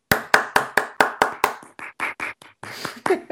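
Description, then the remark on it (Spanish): Brief applause from radio hosts on Negra Radio, celebrating their conversation being broadcast for the first time from African territory: a quick, steady run of sharp hand claps that loosens into softer, more scattered clapping for about three seconds, with no talking over it. “Yo voy a proponer un breve aplauso para que le escuche también su automóvil, desea, aplauda junto con nosotros.”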